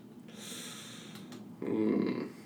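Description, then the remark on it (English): A voice imitates an animal sniffing into a pack: a breathy, airy snuffle builds up, then a louder, rougher snorting burst follows near the end, fairly loud with no speech. “It's going to sniff halfway into your pack.”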